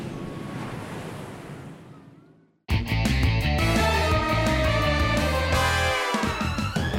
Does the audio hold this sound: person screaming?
no